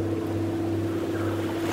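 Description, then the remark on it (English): A motorboat engine drones steadily with a strong low hum at sea, while water rushes and slaps against the prow in the background as the boat rises and falls, continuous and fairly loud, with no voices. “The sounds of the sea fill the air, the rush of wind against your cheeks, the sound of the water slapping against the prow of the boat, the rhythmic rise, engine whine, and then slapping fall of the boat.”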